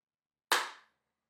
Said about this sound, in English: Hold on. So if I clap right now, will music start playing?